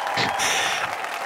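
cheering sound effect

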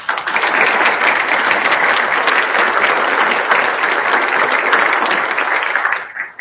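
audience applauding

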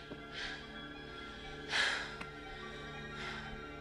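heavy breathing

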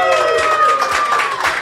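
audience applause and cheering

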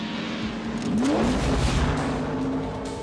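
car engine revving

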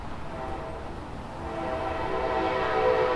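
passing train

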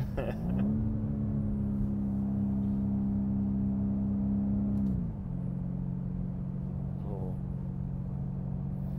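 sports car engine revving

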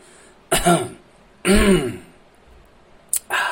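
throat clearing

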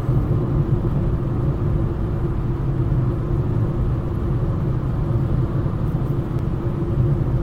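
car interior engine rumble

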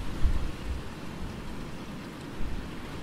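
wind and rain

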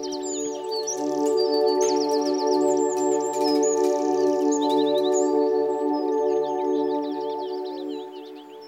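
birds chirping and singing

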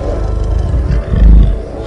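lion roar sound effect

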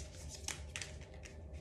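shuffling tarot cards

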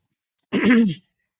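throat clearing

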